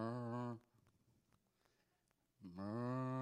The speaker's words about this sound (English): I was in the bedroom the other day and I was studying. And I was playing the sound of a cow.